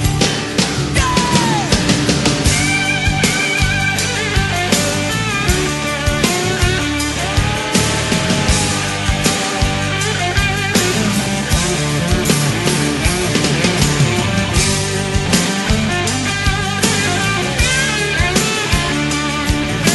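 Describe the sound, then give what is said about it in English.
An electric guitar solo from a band's studio recording wails over the full band, its lead line bending and sliding between notes while drums and bass keep a steady, loud, dense groove throughout. “Now let's listen to this guitar solo.”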